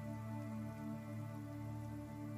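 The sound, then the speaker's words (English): Steady rain falls continuously with a soft, even patter, mixed with a low sustained drone underneath. No one speaks. “But your backpack's not dry, so I don't know why you dried them, but it's currently raining.”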